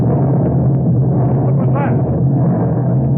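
A heavy, low rumble of an explosion of a tube of nitroglycerin down near the water rolls on steadily for a few seconds, loud and dense, with no sharp single blast standing out and no voices.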